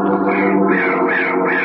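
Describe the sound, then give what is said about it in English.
A carrion crow gives a long, harsh caw, loud, drawn out for nearly two seconds with a slightly wavering pitch and no talking. “This is the story of a man named Spear, of a bird, a kind of carrion crow, of a student of bird life named Victor, and of his uncle, Oren.”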